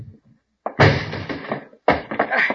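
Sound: door being broken down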